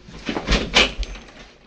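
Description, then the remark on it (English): An extra-wide door to a hotel suite is opened, with a latch click followed by a short scraping sweep and a soft thud as it swings, heard alone without any talking. “The sign over the door says Orson Welles Suite. Extra wide door”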